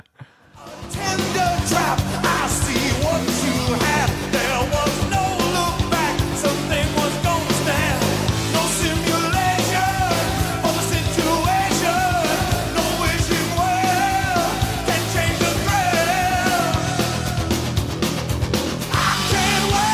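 A loud, dense rock song from a solo album kicks in after a brief moment of silence and plays continuously at full intensity, with thick layered instruments filling the whole range.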